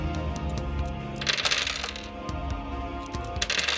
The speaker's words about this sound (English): I do generally need you guys to be quiet while I roll this ridiculous amount of dice. Okay. So, there's a lot of math going on.